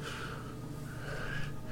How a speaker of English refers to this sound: And then after a few minutes of just heavy breathing...